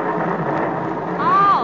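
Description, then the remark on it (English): A steady, rushing thunderstorm sound effect, broad and noisy throughout, with a high whistling howl of wind swelling and bending in pitch near the end. “Heavenly days, it's getting stormy.”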